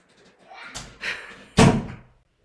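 A door is pulled shut nearby, with a couple of softer rattling knocks before one loud, sharp slam that rings out briefly. There is no talking.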